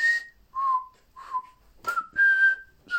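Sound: human mouth whistling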